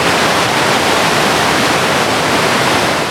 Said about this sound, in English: My thoughts were just a mere reflection of the river's continuous crash.